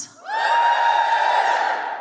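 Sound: audience cheering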